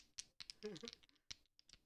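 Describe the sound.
Dice rattle and clatter across a hard tabletop in a quick, irregular burst of small clicks, fairly quiet, with a brief murmur of voice partway through.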